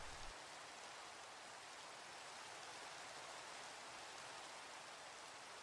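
Steady rain falls continuously, a dense, even hiss of drops with no pauses or voices, holding at a constant moderate level throughout.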